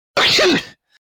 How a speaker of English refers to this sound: That sounded like a video game sneeze. That sounded like something that they would have had on Final Fantasy VI back in the day. The like straight up soundbite.